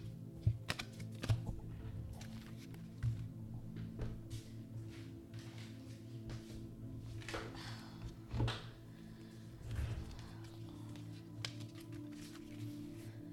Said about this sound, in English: Okay, a lot of cards flew out. I feel like the full moon and Cancer card came out again from that shuffle that we just had, and the full moon in Pisces.